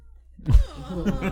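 A cat lets out a cranky, drawn-out meow after a brief quiet moment, the complaint fairly loud, wavering in pitch before trailing off.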